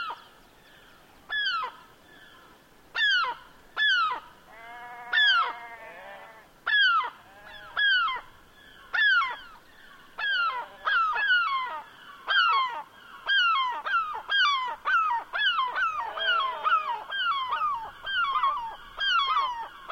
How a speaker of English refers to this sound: We leave you this week on the west coast of Scotland, high on moorland overlooking the harbor at Arisaig, a place where seabirds and sheep seem to be in deep conversation.